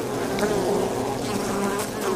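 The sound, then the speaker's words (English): Honeybees buzz steadily, a continuous droning hum that wavers slightly in pitch as the insects move, with no voices present. “I'm Gareth Richard, and I love bees.”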